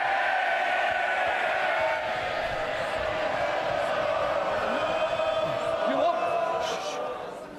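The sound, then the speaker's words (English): Members of parliament shout and jeer over one another in the chamber, a dense, steady roar of many voices, loud and continuous for several seconds before easing slightly at the end. “When you keep shouting, it prolongs, and some of you are trying to catch my eye.”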